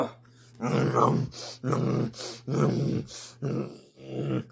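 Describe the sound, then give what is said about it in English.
Deep, rumbling growls from bears come in about five drawn-out bursts with short pauses between, loud, with no talking over them. “They're getting up on me now. I can hear them growling.”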